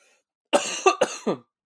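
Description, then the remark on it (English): A quick burst of about four harsh coughs in rapid succession, fairly loud, with no talking around them. “I'm so excited. I'm coughing.”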